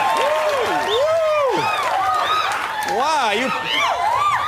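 Loud, continuous audience applause with enthusiastic cheering and whooping voices rising over it, a dense roar of a large crowd greeting a performer as he comes on stage, filling the whole stretch without pause.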